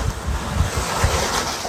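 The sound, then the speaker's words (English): Steady surf from waves on a big lake, Ichigami, washes in while gusty wind buffets and rumbles underneath, a continuous broad hiss with no voices present. “Receiving the energy of the waves.”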